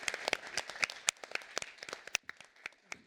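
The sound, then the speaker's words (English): An audience breaks into a round of applause for a panel discussion, many hands clapping in a dense, crackling patter that thins out to scattered claps near the end. No voices are heard. “But if we could just have a round of applause for what has been a brilliant and very intensive panel.”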